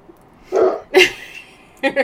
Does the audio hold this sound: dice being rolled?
no